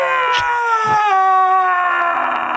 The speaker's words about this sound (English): Now the scream. Now the scream. Give it...